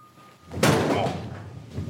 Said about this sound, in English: The lights change and we see that Batman is standing behind the Joker and he smashes the Joker's head on the table.